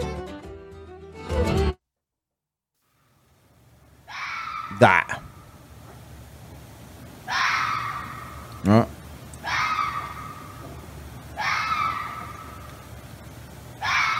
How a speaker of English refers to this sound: that's the first noise I hear to break the silence of my morning is the foxes fucking